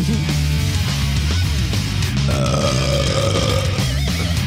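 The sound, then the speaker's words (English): A long, loud, growling burp rumbles on for several seconds without a break, deep and raspy, with no talking over it. “That's my death metal on my burp core.”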